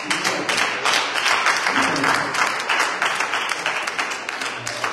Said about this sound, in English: And I just want to take a moment to acknowledge all of the, and if you would just take a moment to celebrate with me by just clapping your hands, all of those that put time in to make the King's Healing Room what it is.